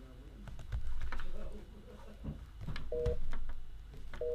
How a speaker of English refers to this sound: Okay, here we go. Okay, got the number dialed. Hit the dial. Here it goes.